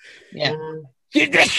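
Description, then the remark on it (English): A single sneeze by a man into his hands: a voiced, rising intake of breath, a brief pause, then a loud, harsh burst of noisy air that trails off quickly. “How unprofessional to sneeze right into Look at his hands.”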